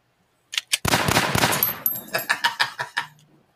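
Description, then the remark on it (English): A gunshot sound effect: a burst of rapid gunfire, a dense volley of shots followed by several separate cracks with metallic ringing, loud, then trailing off into a few softer pops. “What, you have the gunshots?”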